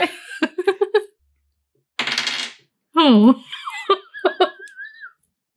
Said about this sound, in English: Don't like it when the keeper rolls dice as well. Yeah, I'm not supposed to.